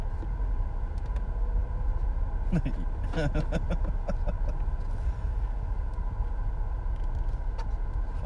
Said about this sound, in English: Sitting in traffic at a red light currently right now, waiting to move on Nimitz.